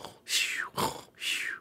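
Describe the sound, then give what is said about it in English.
Someone imitates little snores with their voice: three short, breathy, rasping bursts in a steady rhythm, fairly soft, with no other talking. “That's you doing, like, little snores.”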